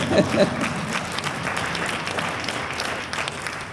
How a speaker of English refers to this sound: I'm delighted, someone's clapping in the back.